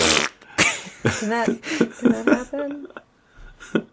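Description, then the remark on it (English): A voice makes a series of blubbery, buzzing mouth-fart noises in quick, uneven bursts, fairly loud, imitating flatulence rather than producing a real one. “What if he farts a lot?”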